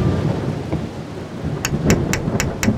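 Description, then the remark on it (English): A nighttime thunderstorm rumbles low and steady beneath a constant wash of rain, then five sharp, evenly spaced taps ring out near the end. “That night, a thunderstorm set in, and the bleakness continued through the next day”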